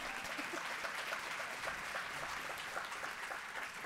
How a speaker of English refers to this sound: Another round of applause is fine.